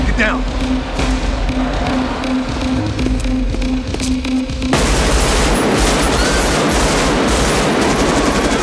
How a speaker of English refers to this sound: It sounds terrifying, and arguably, you know, realistic, because you know they're capturing real gunshots on real location. So that's a really interesting scene, and I think the sound of it is something that makes it terrifying.